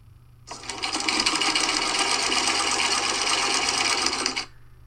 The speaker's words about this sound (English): It was the sewing machine. I really thought you were going to get that one. Because more people have lawnmowers than they do sewing machines.